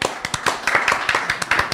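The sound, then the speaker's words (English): A burst of applause in approval of the mountain being named Denali: sharp, dense claps overlapping in a quick, uneven rhythm, fairly loud and steady throughout, with a faint murmur of voices underneath. “And we should applaud that.”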